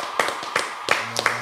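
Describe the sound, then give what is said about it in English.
A handful of sharp, unevenly spaced hand claps, about five in a second and a half, moderately loud, with a brief voice sounding under the last few. “So I want to give a round of applause”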